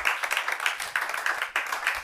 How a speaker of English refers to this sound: Is it not a wonderful blessing? I thought you clapped for me.